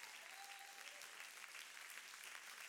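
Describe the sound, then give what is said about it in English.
An audience in a room claps hands together in a steady, dense wash of applause that holds at an even level throughout, with no voices standing out above it. “Everybody in this room, clap your hands, all you people.”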